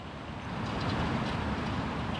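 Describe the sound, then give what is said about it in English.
A steady, unbroken roar of busy road traffic on Memorial Drive in Cambridge, across the Charles River from Boston, heavy low rumble with a broad hiss on top, holding at a constant loudness with no voices. “Memorial Drive in Cambridge is a busy thoroughfare full of traffic.”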